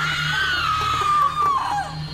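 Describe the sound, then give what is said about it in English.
A single sustained scream of terror, loud, its pitch sliding slowly downward before breaking off, with a steady low hum underneath. “I screamed, and I ran for the door.”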